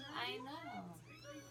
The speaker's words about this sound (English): There's kitties in here. There's a kitty.